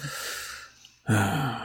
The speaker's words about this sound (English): Now, let me concentrate. We always begin with some level of breathing for some reason.